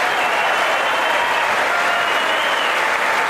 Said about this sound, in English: Now, look, you can see most people clapping. But then all the women, all the Democrat women are seated.